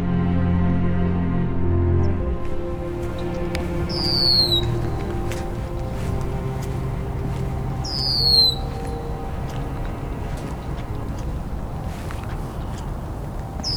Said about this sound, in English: It's early morning in early March at Bayfront Park in Hamilton. This is the first morning I've been here that the red-winged blackbirds have arrived.